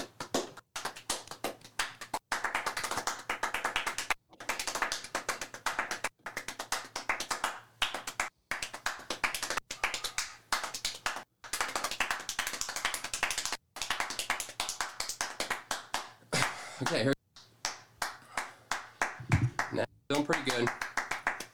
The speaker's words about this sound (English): That's a rate of 12 claps per second for 60 seconds.